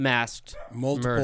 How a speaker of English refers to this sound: Dogs are freaking out.